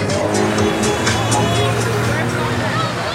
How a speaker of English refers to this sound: And sometimes the ground shakes as cars drive by, blasting music.